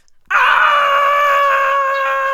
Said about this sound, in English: Well, the robbers were so scared, they jumped up and ran screaming out of the house.